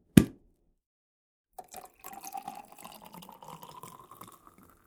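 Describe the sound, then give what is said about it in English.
A sharp pop at the start, then after a brief pause champagne pours steadily into a champagne glass, topping a shaken cocktail, the bubbling pitch rising slightly as it fills. No one speaks. “And now top with your champagne and enjoy.”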